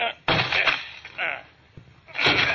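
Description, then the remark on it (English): A door is rammed with a shoulder to break it down: several heavy thuds and cracks come at uneven intervals, with muffled voices underneath. “Come on, let's break down the door.”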